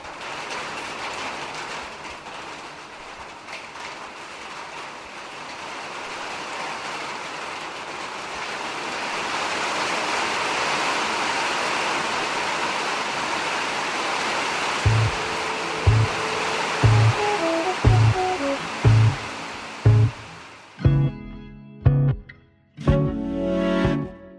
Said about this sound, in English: This request comes from Carlos at Hill Correctional Center. Carlos was born in Puerto Rico and wanted to hear the sound of rain falling on a metal roof because it reminds Carlos of home.